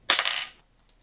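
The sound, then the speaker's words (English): Dice rolled for damage on a critical hit in a tabletop game clatter onto a hard surface, a sharp impact followed by half a second of rattling tumble, then two faint clicks as they settle. “But yeah, go ahead and roll damage for the crit.”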